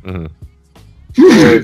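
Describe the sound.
A brief voiced murmur, then one sharp, loud sneeze bursts out near the end, a single explosive blast with a strained vocal edge.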